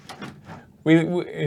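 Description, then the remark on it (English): A door is pulled shut: a few soft knocks and shuffles, then a loud, drawn-out squealing scrape as it slides closed, with faint voices. “Just close the door.”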